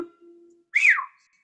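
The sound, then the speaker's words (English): A single short whistle, fairly loud, swooping up briefly then sliding down in pitch, preceded by a faint low steady hum and then quiet. “But could you do a yodel or a whistle to close it out?”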